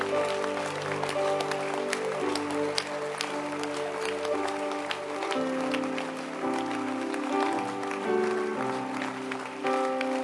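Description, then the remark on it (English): A crowd claps steadily for about ten seconds, answering a call to clap for a book, with dense overlapping hand claps and a sustained musical tone humming underneath. “I said clap your, I didn't suggest to you, clap your hand for this book.”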